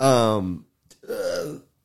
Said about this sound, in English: damn it, I keep forgetting to burp directly into the microphone. I'm sorry.